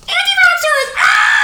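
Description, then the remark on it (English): A loud, high-pitched excited scream like a thrilled child's: one wavering cry that dips slightly, then jumps into a brighter, sustained shriek, lasting about a second and a half. “We're just like, hey, can you say anti-vaxxers and scream? Yay!”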